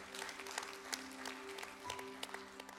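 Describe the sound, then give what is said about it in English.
An audience applauds, a steady wash of many hands clapping with scattered sharper claps, over a faint sustained tonal hum; no one speaks. “I believe those applause will be for heaven as it happens here, and it's going to be a lot louder than what just happened.”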